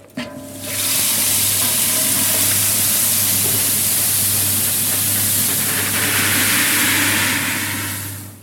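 Malt is poured from a large plastic bowl into hot water in a large stainless-steel pot with a thermometer, during mashing-in for brewing: a steady, loud rushing hiss that begins after a short pause and runs unbroken for about seven seconds over a low, constant hum.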